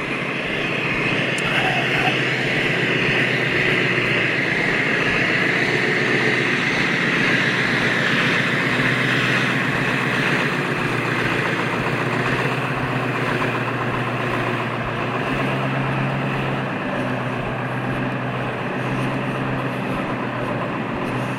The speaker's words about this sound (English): Nothing says happy Monday to a guy who used to be a school bus dispatcher. Like the sound of a diesel engine and a plume of soot-filled diesel exhaust. Nothing says it.